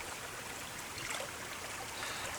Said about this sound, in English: Nice. Yep. I just made the mistake of putting the whole pot in the water.